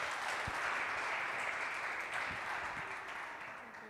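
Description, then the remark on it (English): A church audience at Real Church claps steadily, a dense wash of many hands that stays loud throughout and eases off slightly near the end, with no voices standing out. “Y'all give him one more round of applause.”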